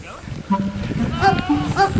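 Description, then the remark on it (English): A goat bleats loudly, letting out two wavering, strained cries in quick succession that sound eerily like a person yelling for help. “I turned to look to see what the noise was, and it was a goat.”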